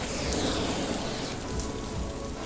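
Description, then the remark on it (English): Heavy summer monsoon rain in Bangladesh pours down in a dense, steady hiss, an unbroken wash of pattering drops that holds an even loudness throughout, with no voices. “Bangladesh is a very wet country. There's monsoons every summer.”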